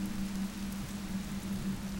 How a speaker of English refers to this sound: She found herself back in the bedroom, feeling the rain blowing through the screen.